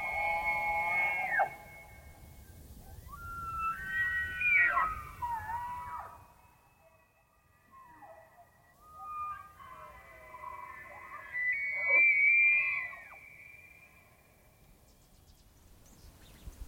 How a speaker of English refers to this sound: The males will bugle, move slowly towards each other until they clash antlers in a show of aggression. Best display wins the mate. Their sounds echo across the Waterton Park front every autumn.